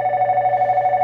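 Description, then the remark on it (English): A telephone rings with a steady, warbling electronic tone that pulses rapidly throughout, fairly loud, with no voices over it. “And I did not know it rings this long.”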